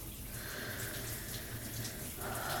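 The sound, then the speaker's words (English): Hot shower water sprays onto a person's skin as they shower, a steady, continuous hiss running without a break at a fairly quiet level. No voices are heard over it. “Even with the hot water spraying on my skin,”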